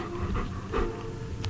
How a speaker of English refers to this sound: But Tenzin the dog won't sit still. Yeah. Sit.